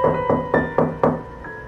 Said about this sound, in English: So I think we should knock. Huh? What if something really gritty and realistic happens, like on all those NPR podcasts you hate because they're so popular? Okay. We can knock, but only because an old rundown house like this has gotta be empty.